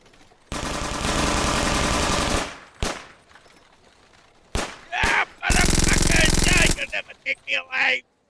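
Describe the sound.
Loud machine gun fire in two long sustained bursts, with a few sharp single shots in between, followed by brief shouting voices at the end.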